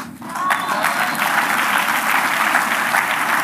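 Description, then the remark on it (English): A crowd applauds steadily, dense overlapping clapping that starts almost at once and holds at an even, fairly loud level throughout, with no voices standing out. “Difficulty clapping, no?”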